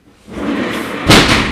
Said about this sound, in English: Oh, shoot. That hit the door.